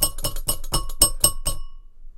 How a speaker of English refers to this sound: I got the bell.